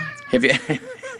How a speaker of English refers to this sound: I just can't talk without this cat making noise. So that cat must do that when he's on the phone. There's Piranha. You guys have heard him before.